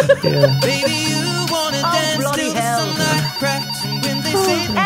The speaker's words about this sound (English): I just love his office phone going off.